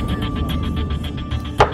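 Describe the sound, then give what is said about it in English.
A single sharp gavel knock lands near the end, loud and brief, a gavel banged in court to call order, over a steady low rumbling hum with faint regular ticking; no one speaks. “Order in the court. Banging the gavel.”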